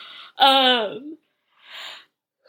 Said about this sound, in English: Excuse me, I didn't mean to yawn.